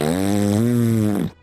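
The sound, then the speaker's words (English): A single loud, buzzing fart, low and drawn out for over a second with a steady droning pitch, then cut off abruptly. Nobody speaks. “We're going to play Name That Fart.”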